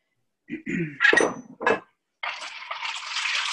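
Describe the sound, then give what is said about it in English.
A few clinks and knocks of containers being handled, then a short pause before a steady, splashing stream of the juice of two whole lemons pours into a pitcher of water to make fresh lemonade, running to the end. “So I've got the juice of two whole lemons, and I've got a pitcher of water. Just going to add the two of those together.”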